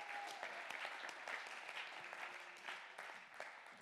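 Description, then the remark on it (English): A church audience claps their hands together in steady, dense applause to praise God, with faint voices mixed in behind the clapping. “Come on, somebody, clap your hands and give God the praise.”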